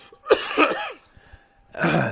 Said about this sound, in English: Today's episode is How to Choke on Your Own Spit.